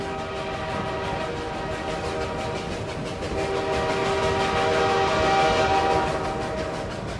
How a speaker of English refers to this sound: What's that? Does that sound like a train to you?